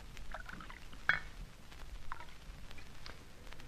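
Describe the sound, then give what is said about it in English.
A drink is poured quietly into a glass, a soft liquid trickle with a single sharp clink of glass early on, without any talking. “Here, Let's have another snort.”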